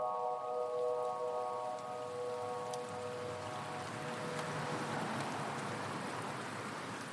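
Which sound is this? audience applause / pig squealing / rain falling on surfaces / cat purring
rain falling on surfaces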